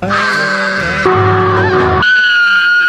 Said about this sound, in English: Those screams are coming from the crypto universe. Okay, maybe not.